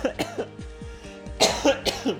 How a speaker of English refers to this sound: It's not coronavirus, I swear. Every time I cough now.